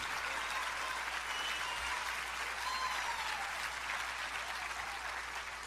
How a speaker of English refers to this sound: Got a standing ovation from that crowd of women, a packed hall at the Marriott in Philadelphia.